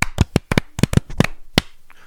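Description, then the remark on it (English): A quick run of sharp hand claps, about a dozen loud, crisp smacks, some landing in quick pairs, slightly uneven as two people clap together on cue after a spoken count of 1 2 3, ending with one final clap and quiet. “1 2 3 dun dun dun dun dun, okay. And then clap.”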